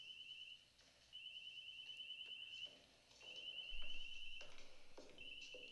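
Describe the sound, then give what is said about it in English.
A high, pulsing electronic alarm sounds in repeated bursts about a second long, broken by short pauses, with faint background noise and no talking. “Red alert. Alarm. Alarm.”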